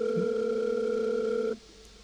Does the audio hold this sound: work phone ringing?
yes